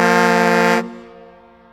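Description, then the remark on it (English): A single loud train whistle blast, a rich, steady chord-like tone that holds for under a second, then cuts off and leaves a fading ring behind it. No one speaks. “I mean, the train whistle, that's classic.”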